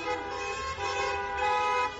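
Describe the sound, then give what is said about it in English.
Car horns blare in a steady, overlapping honk that holds for the whole couple of seconds, loud, with a low rumble of engines and traffic underneath; in China, users of the Neihan Duanxi app beep car horns in public as a coded greeting. “Videos shot by users show them greeting one another with coded messages in public, beeping car horns, opening car boots.”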